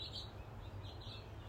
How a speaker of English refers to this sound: A lot of birds are showing up.